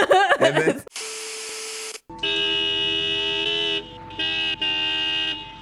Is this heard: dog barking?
no